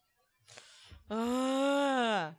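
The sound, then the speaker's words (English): After a brief breathy exhale, a person lets out one long, loud, droning groan that swells and sags slightly in pitch, mimicking a dying whale. “And like dying whale noise, and you are, you're like even in beached position, because right.”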